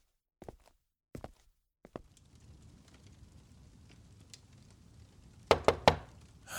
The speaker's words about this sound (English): Just a moment. I said one moment, I'm coming. Knock, knock, knock. Here's a knocking indeed.